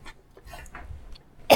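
Several faint, feeble coughs sputter out, followed by one sharper, louder cough up close at the end. No one is talking.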